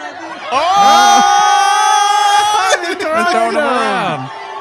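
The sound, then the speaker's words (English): A loud crowd stealing a dwarf from a car shouts and cheers, many overlapping voices whooping and yelling together in a sustained, excited roar that barely lets up for several seconds. “A crowd steals a dwarf from a car.”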